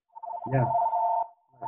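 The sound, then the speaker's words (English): A telephone rings with one steady electronic tone lasting about a second, clear, while a voice briefly overlaps it and another starts just after. “Oh, there you go. Phone call.”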